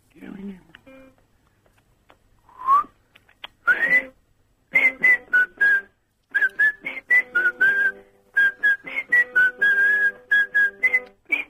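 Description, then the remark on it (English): A person whistles a short tune in a series of breathy, airy notes with audible rushing breath, the pitch wavering up and down in quick phrases, fairly loud. “It's quite a breathy whistle. It's not a clean, clear whistle.”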